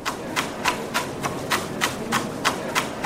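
A knife chopping a cucumber on a board, about ten crisp, sharp taps in a steady, fairly quick rhythm, each one bright and clicky, with no voices.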